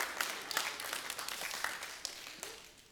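A crowd applauds steadily, many hands clapping in a dense, bright patter that stays fairly loud before tapering off slightly toward the end.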